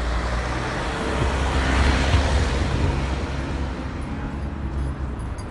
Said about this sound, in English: Wait a minute, there's a couple of workmen's vehicles coming through.